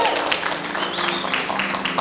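An audience claps together in a steady, continuous wash of applause, dense and fairly loud throughout, with a faint murmur of voices mixed into the clapping.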